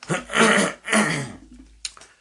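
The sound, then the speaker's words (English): Two drawn-out, raspy bouts of coughing and throat clearing, followed by a short sharp cough. No talking. “Dude, would you stop coughing up homeless people?”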